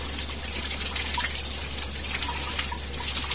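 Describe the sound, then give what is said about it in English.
Hot water runs steadily from an outdoor shower in the bush near a cottage, a constant bright splashing hiss with scattered drips and a faint low hum underneath; no one speaks. “That water's hot.”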